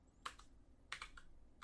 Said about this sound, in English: You're typing it up.